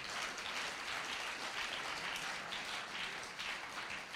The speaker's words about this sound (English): First time I ever had a church clap over the fact that I said I wanted to quit.